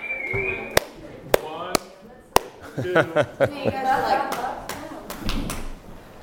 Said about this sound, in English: Okay, guys. Trying different claps.